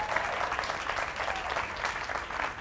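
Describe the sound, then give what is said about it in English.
A crowd applauds steadily, many hands clapping in a dense, even patter that holds at a constant moderate level throughout with no voices standing out. “Let's clap for that right there, y'all.”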